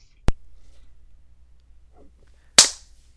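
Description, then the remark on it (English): Two sharp hand claps, about two seconds apart, with near silence between them; the second clap is louder and leaves a brief ringing tail. “Did you clap?”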